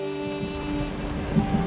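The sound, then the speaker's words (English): A freight train rolls slowly along the tracks on a sunny day, heard by a rider sitting in its open boxcar door as a steady, dense rumble with a faint droning hum and occasional low knocks, continuous throughout with no voices. “I notice the train is going much slower than last night.”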